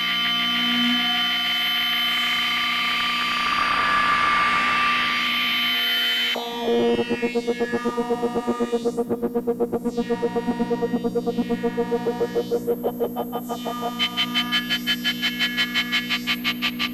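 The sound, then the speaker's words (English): A buzzy, harmonically rich modular synth drone through a Wasp filter swells and sweeps, then turns into a steady rapid pulsing as a Pico R&D sine output modulates the filter's volume, clocked by a regular clock from a Kitty Eyes, with rising and falling resonant sweeps. No voices. “Yeah, I just love doing stuff like this for weird drones.”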